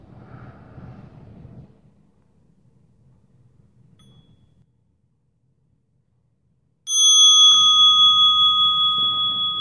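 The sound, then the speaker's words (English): A single meditation bell is struck during a guided breathing meditation and rings out loudly with a clear, sustained metallic tone that slowly fades, following a stretch of quiet low rumble and near silence. “Open your eyes to the sounds of the bell.”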